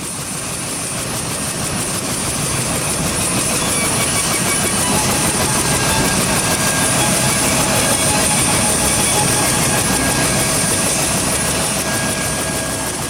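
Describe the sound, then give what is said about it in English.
A private helicopter engine starting up: a loud, dense turbine roar swells in over the first second and then holds steady, with thin high whining tones running through it and no one talking. “And tell the royal pilot to fire up my private helicopter.”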